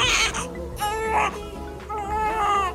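A newborn baby cries in loud, high-pitched wails, three strained bursts with brief breaths between them, each cry rising and wavering with a raspy edge.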